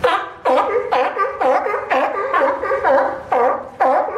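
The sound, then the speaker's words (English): A sea lion barks repeatedly in a steady, rhythmic series of about nine loud, honking calls, each roughly half a second apart, clear with no talking. “That's actually not a seal, but a closely related pinniped called a sea lion.”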